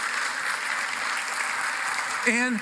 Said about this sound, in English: Can you guys just give a round of applause to God for creating her? We say thank you.